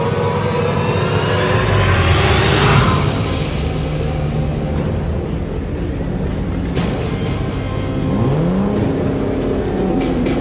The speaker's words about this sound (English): They heard a loud engine roar and saw a black sleek vehicle heading straight towards them. The thugs dove for cover as the Batmobile crashed through the gate.